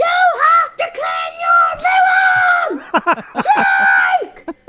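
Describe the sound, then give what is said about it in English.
A single voice imitates the speaker's mom and dad angrily screaming at him: loud, strained wordless shrieks held for about a second each, broken by short choppy bursts before another long yell. “And what my mom and dad scream at me, they're like this.”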